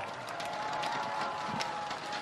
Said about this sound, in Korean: 후보께서 서약하셨습니다. 약속 잘 지켜주시라고 더 큰 박수로 응원해 주십시오.